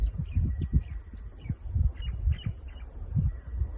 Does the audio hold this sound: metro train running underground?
no